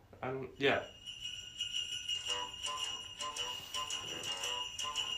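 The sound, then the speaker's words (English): A goofy comedy Christmas novelty song about a donkey starts with a brief braying cry, then a bright, steady jingle of sleigh bells over a bouncy, clip-clopping beat, loud. “It's one of those hilarious songs that those just classic comedy Christmas songs.”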